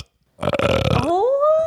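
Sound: a burp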